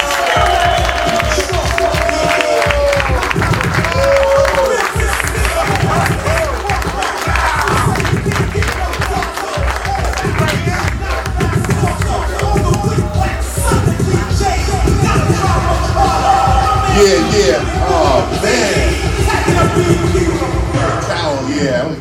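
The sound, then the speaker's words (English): An audience at Queens Library claps and cheers to welcome a guest at a Hip Hop Series interview recorded January 14, 2016: a loud, dense crowd sound with many overlapping voices and whoops keeping it steady and energetic throughout. “Ladies and gentlemen, put your hands together for the brother, my man”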